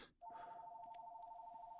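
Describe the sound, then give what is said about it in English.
A landline telephone in a house rings loudly, a steady electronic two-tone trill that starts almost immediately and carries on unbroken to the end, with no voices. “I forgot I live in a house with like a landline.”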